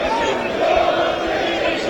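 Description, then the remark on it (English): A loud, sustained football crowd roar with a low, droning boo aimed at player Luke Bolton as he comes out to warm up, steady and unbroken for the whole two seconds, filling the stadium with dense noise. “As Luke Bolton comes out to warm up, gets some booze, and has one fan in the front row clapping him.”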